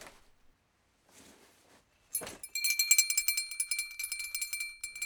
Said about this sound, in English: Ah, the bedtime bell. Of course.